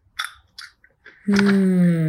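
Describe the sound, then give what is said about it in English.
Someone chews chili-lime flavored popcorn, with a few soft, crisp crunches spaced out over about a second. Then a long, steady hummed vocal sound takes over. “There's not as much crunch.”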